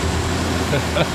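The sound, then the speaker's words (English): A Trans Pennine Express passenger train on its way to Manchester rumbles past with a steady, low mechanical drone and broad hiss, while a faint voice briefly murmurs over the noise. “That's the Trans Pennine Express, and that's its way to Manchester.”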